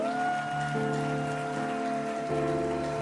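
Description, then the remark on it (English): A crowd claps in a dense, continuous wash of applause for a couple just pronounced husband and wife afresh by a minister of the gospel, with steady sustained musical tones running underneath throughout. “Come on, clap your hands for them.”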